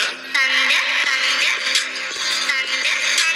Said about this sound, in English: I hear this song at work and I fucking hate it. Have you heard this song?